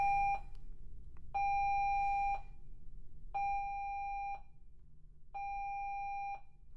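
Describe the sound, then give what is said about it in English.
A cruise ship safety drill alarm: four steady, electronic tone blasts, each about a second long, evenly spaced and fairly loud over a low background rumble, with no talking. “This is the alarm that sounds when there's a drill.”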